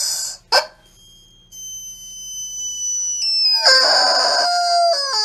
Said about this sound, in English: How tall is that? How tall is this rubber chicken? 27 inches. It's got a 45 second scream.